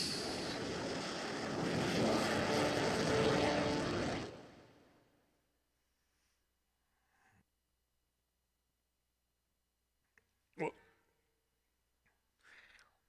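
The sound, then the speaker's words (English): A helicopter roars loudly overhead for a few seconds, its rushing noise building and then fading quickly into near silence, followed by a couple of faint, brief knocks. “imagining himself from the helicopter, waving goodbye amongst the grass”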